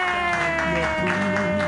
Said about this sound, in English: No one, everyone loved it so much. Yeah. If you loved it that much, clap wildly. Yeah.